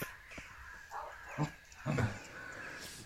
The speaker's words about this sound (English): Wow, that's the dream army of crows right there, isn't it?